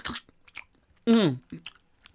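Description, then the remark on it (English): A voice imitates loud, exaggerated chewing of food: several wet smacking bursts, a drawn-out voiced moan-like sound in the middle, then a few more smacks, with no talking. “So it's all a performative thing with suck food while we're all making pretend that we're people that we're not, with loud freaking chewing.”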